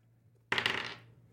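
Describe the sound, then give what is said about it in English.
A sudden bright clatter of dice tumbling across a hard tabletop, rattling for about half a second before settling, with a faint low hum underneath; the dice are rolled for an Arcana check in a tabletop role-playing game. “But those dice were bad, so this dice is better.”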